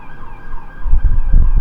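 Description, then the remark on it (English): A police siren wails steadily, its tone wavering, while a low rumble of passing traffic grows louder underneath. No one speaks. “Police siren. Gosh. Always.”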